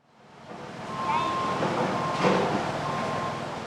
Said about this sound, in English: Dump trucks and heavy equipment beep and bulldoze on either side of Ludlow, clearing the roads and stirring up a hazy layer of dust.